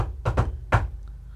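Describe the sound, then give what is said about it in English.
A secret knock on a door: two quick raps, a brief pause, then a single final knock, crisp with no one talking. “Do you know what that knock means?”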